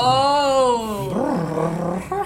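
A female pug tucked under a hood gives a drawn-out, purring grunt, a steady nasal groan that wobbles up and down in pitch before trailing off, sounding on its own for about two seconds.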